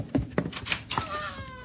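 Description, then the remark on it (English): A newborn baby's thin, wavering cry rises briefly after a few soft thumps, sounding somewhat faint, with no talking over it; a new child has just been born. “The new child is born.”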